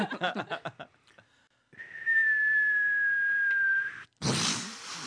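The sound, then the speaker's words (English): A person vocally imitates an explosion as a sound effect for the end of an era: a long whistle sliding slowly downward over a breathy hiss, then a sudden loud, noisy burst. A short bit of speech comes before it. “Oh, so it's an explosion. Yeah, we like just nuked the era.”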